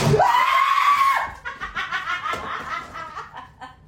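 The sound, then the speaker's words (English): A loud, sustained high-pitched scream from a TikTok video, lasting about a second, followed immediately by a couple of seconds of choppy, breathy laughter and snickering. “That's not the end scream.”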